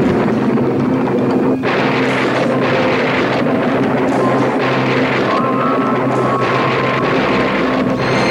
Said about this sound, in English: With great flashes and loud crashes, we immediately come upon a thunderstorm above a straw hut.